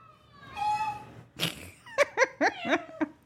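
cat meowing

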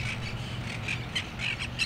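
parrots squawking

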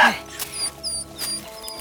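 small dog yipping

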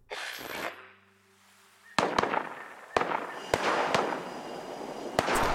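video game gunfire

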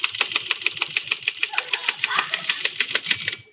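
typing on a typewriter

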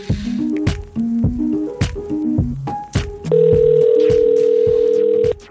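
telephone dialing and ringing

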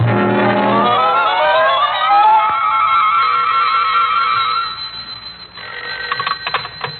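telephone bell ringing

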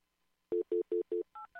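telephone number being dialed

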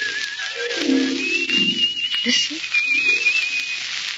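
a person whistling

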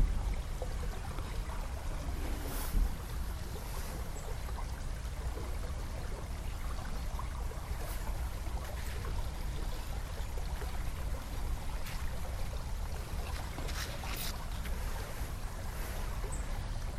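river water flowing

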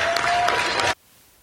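applause

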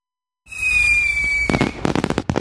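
fireworks exploding

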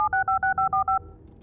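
telephone dialing tones

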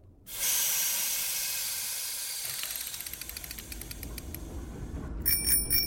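bell ringing repeatedly

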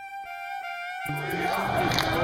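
crowd chanting

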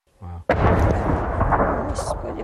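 distant explosion

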